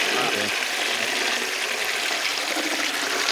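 A toilet flushes, a loud, steady rush of swirling water that fills the whole moment without letting up.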